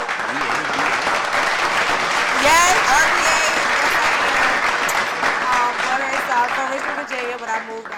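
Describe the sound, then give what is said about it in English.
A crowd claps and cheers in sustained, loud applause, with whoops and voices mixed into the steady patter of hands. “Give me my high five. Give me my clap.”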